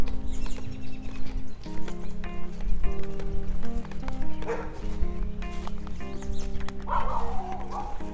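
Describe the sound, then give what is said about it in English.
A dog barks a few times, short sharp bursts spaced apart, set against a steady droning hum that runs throughout. “You were right, it was a dog.”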